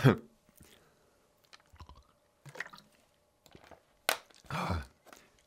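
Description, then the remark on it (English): Someone takes a sip of water: soft slurping and wet mouth clicks, a couple of small swallows, then a breathy exhale, with no talking. “I'm actually going to have a sip of water.”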